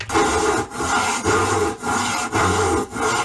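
A handsaw cuts through wood in steady back-and-forth strokes, about six loud rasping passes with brief pauses between them, with no voices.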